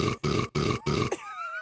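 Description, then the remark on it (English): A short, rough burp repeated four times in quick, identical succession like a loop, followed by a thin, wavering high-pitched squeal that trails off. “That wasn't the only time that you burped in the show.”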